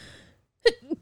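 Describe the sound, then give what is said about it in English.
A single sharp sneeze bursts out after a short quiet pause, trailing into a softer voiced breath, with a faint tail of voice fading at the very start. “Well, I stopped recording before you started sneezing.”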